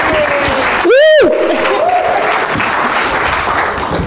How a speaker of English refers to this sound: a big round of applause here.